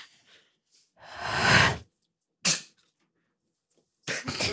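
A person coughs several times: a long, rasping hack, then a sharp single cough, and finally a quick pair of harsh coughs, with brief silences between.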